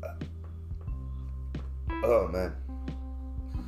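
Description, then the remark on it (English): A single sharp sneeze bursts out, loud and brief, with a short spoken exclamation just before it and a low steady hum underneath. “Bless you.”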